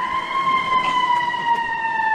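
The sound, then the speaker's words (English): An emergency truck siren wails loudly and continuously, a sustained tone drifting slightly lower in pitch throughout, with no voices. “By the way, believe it or not, I mean, little known fact, I believe us playing sirens on the show is illegal.”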